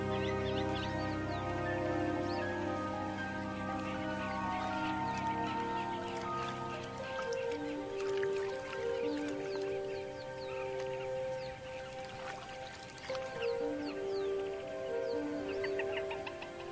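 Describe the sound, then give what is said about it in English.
A male jacana gives a series of short, repeated chirps and clucks, calling his chicks to him, layered over a steady, sustained musical backdrop that runs throughout. “With a coded chirp, he calls his chicks to him.”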